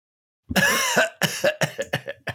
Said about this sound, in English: You know what I have here? A cough?